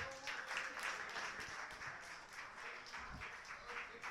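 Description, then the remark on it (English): A crowd at a poetry slam semifinal applauds steadily for several seconds after the judges' scores are read, a dense wash of many hands clapping at once, with no voices standing out. “You can clap now.”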